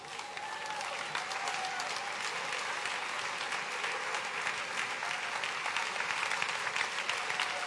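Steady, sustained applause from an audience, a dense wash of many hands clapping at an even level for several seconds with no pauses, no voices standing out above it.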